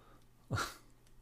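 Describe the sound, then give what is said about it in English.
A single short, sharp sneeze-like burst from a voice, a spoken word delivered like a sneeze, standing alone against quiet background. “Sumpf. Bless you.”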